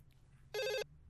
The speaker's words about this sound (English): Quickly dial it. It's ringing. Okay.